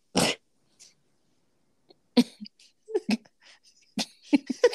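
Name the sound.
choking cough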